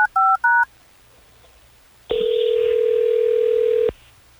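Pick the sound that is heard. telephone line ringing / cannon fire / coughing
telephone line ringing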